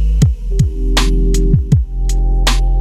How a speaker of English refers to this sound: Excuse the interference.